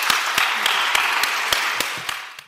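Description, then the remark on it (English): Audience applause at a conference, a dense wash of many hands clapping steadily at moderate loudness, with a few sharper, louder claps standing out before it begins to fade at the end. “A round of applause, please,”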